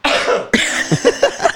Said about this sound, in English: Actually, I'm gonna cough loud as fuck. I'm gonna be away from the mic.